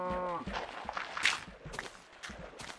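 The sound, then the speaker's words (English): A cow outside gives one short, low moo at the start, followed by a run of soft scuffling footsteps and thumps. There is no talking. “There's a lot of splishing and splashing and woofing and mooing going on outside.”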